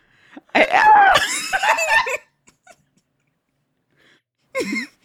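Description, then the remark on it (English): A person lets out a loud, strained yell of frustration lasting over a second, followed after a pause by a shorter, sharp outburst. “I'm sorry for yelling, people, but this is just my natural reaction.”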